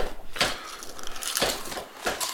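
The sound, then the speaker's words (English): Potato chips being crunched: three crisp, bright bites spaced about a second apart, each a sharp crackling burst with brittle, splintery texture. No one speaks. “That That chip crunch sounded so goddamn crisp.”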